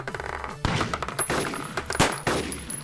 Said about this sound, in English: 4 shots peal out, but their echoes are muffled by the permeating din of the Sea of Madness.